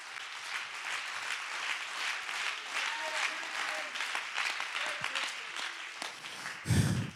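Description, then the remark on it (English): An audience claps hands in a dense, steady burst of applause lasting several seconds, with faint voices mixed in and a brief louder thump near the end. “Oh, somebody ought to clap your hands in the house.”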